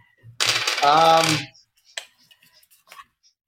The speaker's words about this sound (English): Typing Arizona into Wikipedia.